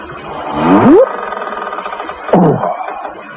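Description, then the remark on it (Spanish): A person imitates a short fragment of a long whale song with two moaning, sliding vocal swoops, the first rising sharply upward, the second following after a pause, fairly loud. “A mí no se me da muy bien cantar las canciones de las ballenas, pero voy a intentarlo.”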